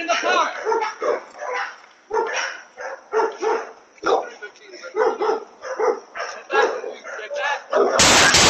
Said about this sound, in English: He was cornered by the dog. The dog was barking at him.